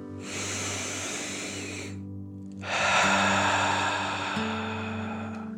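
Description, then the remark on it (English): A relaxing deep breath: a long, deep inhale through the nose, filling the belly, is followed after a short pause by a louder, forceful exhale through the mouth, over a soft, steady musical drone. “Breathe in through your nose, filling up your belly, and then out through your mouth, imagining that you are breathing fire.”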